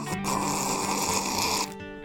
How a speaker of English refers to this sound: That was a nice loud slurp. Your grandkids are going to love it.